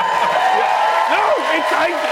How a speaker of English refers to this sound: It's always fun when they clap like that as though I can like sign that into law. Like, enough of you clapped and yes, now it's happening.